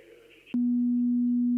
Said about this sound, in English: Right. I'm going to play you some tones now. Can you tell me if they come through, okay?